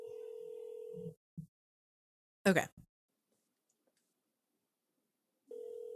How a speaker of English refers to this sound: Can you hear it ringing? I can hear it ringing.